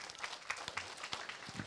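A group of people claps their hands in a steady, scattered patter of overlapping sharp slaps. The applause is fairly soft and even throughout, with no voices.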